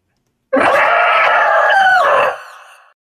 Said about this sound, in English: All right, so you all see this thing. As it rears back, it gives this otherworldly shriek.